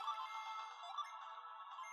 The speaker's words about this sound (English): It's a car alarm going off.